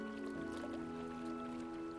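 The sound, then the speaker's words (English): Quiet, steady flowing river water rushes continuously not far away beside a dark forest road, blended with a sustained, low musical drone; no voices are heard. “The forest on either side is dark, though you can hear not far away from you the sound of the Darkling River.”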